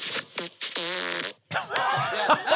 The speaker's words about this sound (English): Here's silly double fart. Let's see how this one goes.